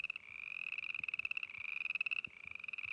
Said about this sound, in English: And as I sit there staring for what was probably a lot longer than it needed to be, I finally realize that I'm looking at thousands and thousands of frogs.